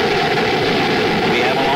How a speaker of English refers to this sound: We have ignition sequence start. The engine's now building up to 7.7 million pounds of thrust.